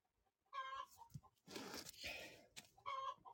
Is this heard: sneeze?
no